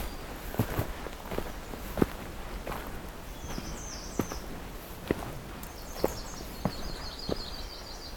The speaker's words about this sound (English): Here's a yellow rumped warbler.